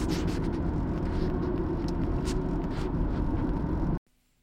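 A car drives along an extremely windy road with a steady, heavy low rumble and a rushing hiss of road noise. It holds constant for about four seconds, then cuts off abruptly to near silence.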